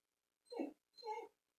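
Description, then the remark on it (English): A dog whines twice in quick succession, two drawn-out, tonal cries separated by a brief pause, fairly quiet and heard on their own with no talking. “This dog is like killing me right now. I don't know what he wants.”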